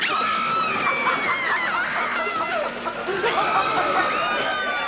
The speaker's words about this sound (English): Yeah, questionable enough that what happens is it fades out, we fade into screams, which is quite a violent scream.